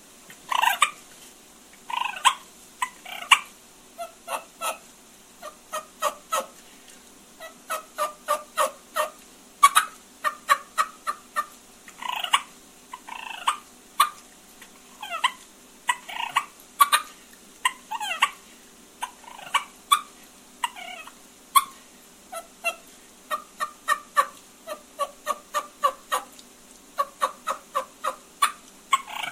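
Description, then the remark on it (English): A turkey call makes soft purrs and light yelps: many short, clucky bursts in irregular clusters, fairly quiet, with no talking. “I'll do some little light purrs and a couple light yelps.”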